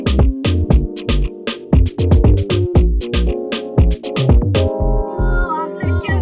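A samba track plays loud and close, with sharp, rapid percussion hits driving a steady syncopated rhythm over sustained melodic tones and no voices.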